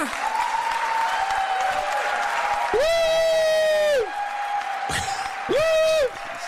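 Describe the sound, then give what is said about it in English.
A crowd applauds steadily after a speaker on stage announces being gay, while two shrill, sustained whistles or whoops cut through the clapping, a longer one in the middle and a shorter one near the end. “Now, I do want to say, with 50 categories on Facebook, with big applause when you're outing yourself, how come when I say I'm bi-curious, which is a category on Backpage, it's a category on Craigslist, how come I get, no one's applauding for me?”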